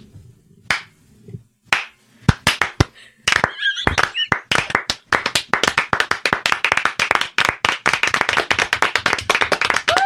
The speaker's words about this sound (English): There's a slow clap. There's a slow clap rising through the room.